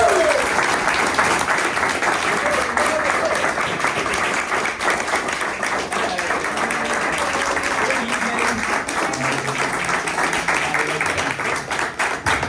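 A crowd bursts into a loud, sustained round of applause, dense clapping that holds steady for the whole stretch, with faint voices and a few cheers mixed underneath.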